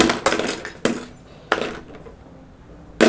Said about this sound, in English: Sorry. Knock something over. I just arranged those.